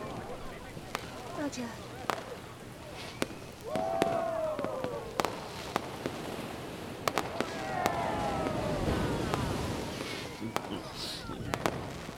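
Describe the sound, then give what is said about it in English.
A fireworks display at a party on a yacht bursts in an irregular volley of sharp pops and crackles, with a couple of whistling rockets sliding in pitch, over a low murmur of voices. “He's throwing a party on a yacht. With a fireworks display.”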